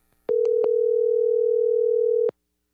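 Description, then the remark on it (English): A steady, loud telephone dial tone of an outgoing call being placed to New York hums for about two seconds, preceded by a few quick clicks and cut off abruptly with another click; no one speaks. “why don't we just take a phone call out to New York, reach out to our man Cole Coffee”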